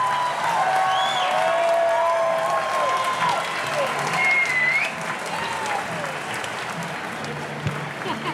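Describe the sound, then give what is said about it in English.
A large baseball stadium crowd cheers and applauds steadily, a dense roar with whistles and shouts rising above it, loud throughout and easing slightly toward the end. “Listen to this crowd, folks.”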